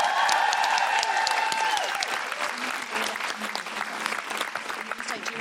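An audience breaks into loud, dense applause, with many hands clapping in a fast, continuous patter that holds steady for several seconds and eases only slightly toward the end.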